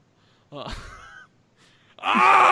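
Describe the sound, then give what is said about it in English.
A person mimics a crow's caw with two harsh, nasal vocal cries, the second louder and rougher than the first, with a brief quiet gap between them. “All right, caw, I am a bird.”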